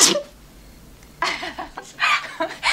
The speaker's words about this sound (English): What did I just do? It's called a sneeze from the flower, but only humans are supposed to do it. What did it feel like?